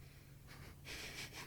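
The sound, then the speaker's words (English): A loud nasal sniff of a scented item: a short intake of air followed by a longer, stronger breathy inhale through the nose, with no talking. “Oh, he took a big whiff out of that one.”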